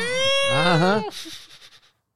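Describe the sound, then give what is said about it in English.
A person imitates a long, wavering cat meow, loud, followed by a quick series of soft, breathy bursts that fade out. “It's the cat?”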